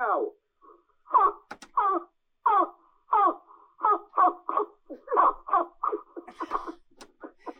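A blade of grass blown like a reed, played live on the Shed Show, giving a run of shrill, squawking squeals, over a dozen short wavering bursts, spaced unevenly at first, then coming quicker and rougher toward the end.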